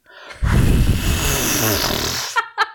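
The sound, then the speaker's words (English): A loud deep breath in and out, amplified into a rough, rushing whoosh that lasts about two seconds, followed by a couple of short vocal sounds. “That's me trying to breathe in on a podcast so you can hear it.”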